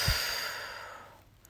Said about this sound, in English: A deep breath in and a deep breath out.